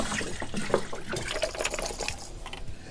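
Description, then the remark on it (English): Juice splashes and gurgles steadily as it's poured into a punch, a continuous trickling stream with no talking. “You want to shake this up before you pour it in, okay, guys?”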